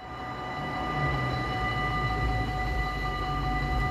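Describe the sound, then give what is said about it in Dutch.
A railway level crossing as its barriers close again, with a steady, continuous warning tone ringing over a low rumble, moderately loud, and no one speaking. “Oh, de spoorbomen gaan weer dicht.”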